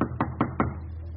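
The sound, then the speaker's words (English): Three firm, evenly spaced knocks by a stormtrooper on the wooden front door of a German home in Berlin, Germany, fairly loud, followed by a brief quiet pause with no voices. “He knocks on the front door.”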